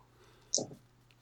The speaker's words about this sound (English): Okay, and I can reroll two dice.